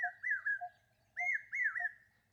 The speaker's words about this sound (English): The brain fever bird, or the common hawk cuckoo, starts up. Its notes escalating to a crescendo, almost as if rising with the temperature. The brain fever bird is so called because its call sounds like a repeated brain fever. brain fever, brain fever